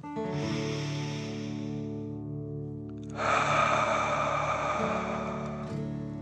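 A slow, steady inhale through the nose lasting a couple of seconds, a short pause, then a louder, forceful exhale through the mouth, over a soft sustained musical drone.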